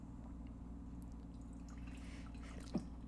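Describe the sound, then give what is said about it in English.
Beer is poured into a glass, a quiet, brief trickle of liquid over a steady low hum, ending with a small drip or clink. No one speaks. “You want to pour me some more, please? Of course. I think I poured me a little bit more.”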